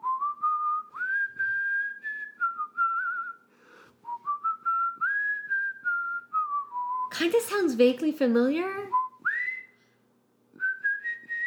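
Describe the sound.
A person whistles the intro of a song, a bright, wandering melody, pausing briefly between phrases, while another voice breaks in with a short remark midway before the whistling resumes.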